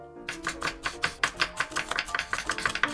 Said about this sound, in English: Yeah, you can chop the baby zanahorias, and I'll chop the papas or the potatoes, since all the papas are quite a bit bigger than you, buddy.